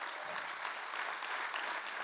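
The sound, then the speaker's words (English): A church audience claps for the SCI Chester family, joined in partnership with God Behind Bars, in a steady, dense wash of applause that holds at an even level from start to finish. No one speaks over it. “Show them some love, family. Clap for them.”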